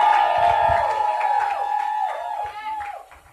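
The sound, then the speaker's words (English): An audience claps and shouts for the Lord in a loud, continuous burst of cheering and whooping over a sustained musical tone, tapering off slightly near the end. “If you believe it, give the Lord a hand clap and shout if you can.”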